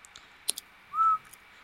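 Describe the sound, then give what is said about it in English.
A single short whistled note, steady and fairly loud, held for about a quarter second after a couple of faint clicks, with no talking around it. “So did you just whistle?”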